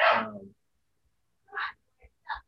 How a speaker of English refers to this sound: Sorry, my dog is going crazy.